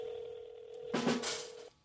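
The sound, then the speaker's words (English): A steady phone dial tone hums, then a short, bright burst of touch-tone keypad beeps as a number is dialed, before the line goes quiet. No one speaks. “I said star 68 him.”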